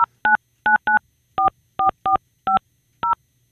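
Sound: telephone touch-tone dialing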